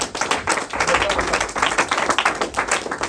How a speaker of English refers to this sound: Oh, if you're clapping, clap.